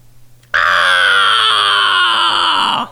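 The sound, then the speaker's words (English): A deer screams once, loud: a harsh, piercing cry that bursts in abruptly and holds a steady, slightly falling pitch for over two seconds before cutting off, with no other sounds. “Deer scream.”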